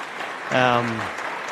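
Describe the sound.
Audience applause, a steady wash of many hands clapping throughout, with a brief voiced shout or cheer rising over it midway before the clapping carries on.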